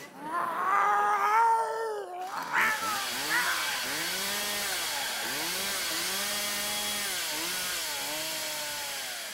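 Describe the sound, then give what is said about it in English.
A cat named Murder Cat yowls and screeches in drawn-out, rising and falling wails, loud, as it attacks a man, while a harsh, noisy scuffling roar swells beneath it and continues throughout. “Our cat, Murder Cat, murdered your husband.”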